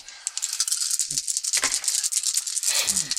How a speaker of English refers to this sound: But everyone roll a perception check with a hard rating, so 3 purple dice. 3 of them, and my perception is based on cunning, so I get that.